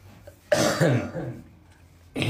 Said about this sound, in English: Okay, so I'm gonna need a second here to clear my throat. I'm just getting over a cold, but I'll give y'all a little hint of what I can do.